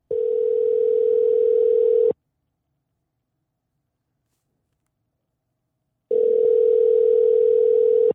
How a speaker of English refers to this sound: we tried calling Kroll. He didn't answer.